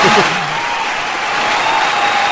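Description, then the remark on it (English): A crowd breaks into steady applause, a dense wash of many hands clapping at an even, fairly loud level throughout, with a brief voice-like murmur at the very start. “Listen, I'm going to give you a crowd clap because, honestly, Demigods was pretty good.”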